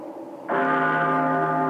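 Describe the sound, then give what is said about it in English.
A mortuary bell tolls once, deep and loud, and rings on, its rich layered tones sustaining and slowly fading, with a faint murmur beneath before the stroke. “Graveyard rats stop their gnawing and listen in awe as a mortuary bell tolls.”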